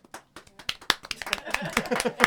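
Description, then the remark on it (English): Hand clapping starts with a few scattered, sharp claps, then quickens into a steady, uneven patter of claps that grows louder and denser toward the end. “I'm clapping.”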